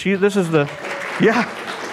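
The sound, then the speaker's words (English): A steady wash of audience applause for the speaker's wife, with voices calling out over it near the start and again briefly toward the end. “Everywhere she goes, she gets applause.”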